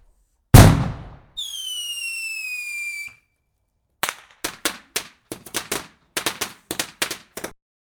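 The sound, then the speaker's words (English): Fireworks go off: one loud boom, then a shrill whistling rocket for a couple of seconds, followed by a rapid, uneven run of sharp crackling bangs. No voices. “Do you live in Ireland and want to use fireworks?”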